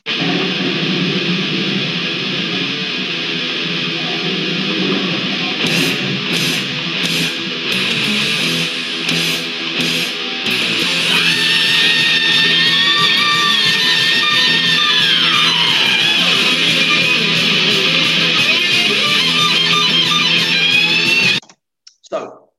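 A loud, dense heavy metal song with distorted guitars and pounding drums, broken by a long, piercing high-pitched vocal scream midway that slides downward before the music cuts off abruptly.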